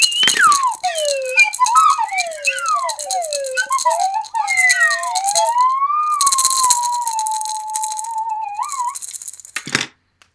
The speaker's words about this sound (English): Hey, what other instrument was that in the background? It's a maraca slide whistle combo. Oh, nice, nice. That has such potential.